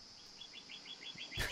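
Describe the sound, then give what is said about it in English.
Male cardinals give a steady series of about seven short, high chirps at an even pace, quiet, ending with a brief burst of rustling noise. “And let me tell you, if you're not familiar with cardinals, they are ornery, I believe is the proper bird term, aviary term.”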